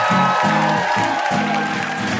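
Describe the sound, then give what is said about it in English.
A live audience at a taping of the show Ask Me Another claps steadily for VIP guests Joseph Fink, Jeffrey Craner and Cecil Baldwin, in a loud, dense wash of applause, with bursts of cheering and crowd noise mixed in throughout. “One last round of applause for our VIPs, Joseph Fink, Jeffrey Craner, and Cecil Baldwin.”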